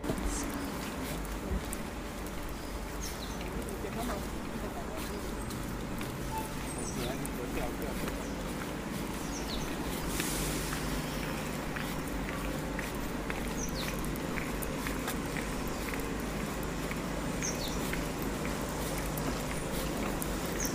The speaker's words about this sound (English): You can kind of hear them yeah. tweeting in the background. I just thought it was a really nice sound